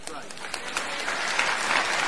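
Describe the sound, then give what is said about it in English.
An audience applauds in a dense, steady wash of clapping that swells slightly toward the end, with scattered sharper claps standing out early on. “This is a please clap moment.”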